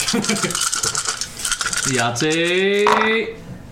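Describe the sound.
Crimson dice rattle and clatter across a table during a Dungeons & Dragons game in a quick, busy burst lasting under two seconds, then a sustained, pitched voice-like tone rises and holds over the fading clicks.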